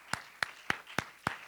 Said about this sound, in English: Clap your hands as you're seated in the name of the Lord.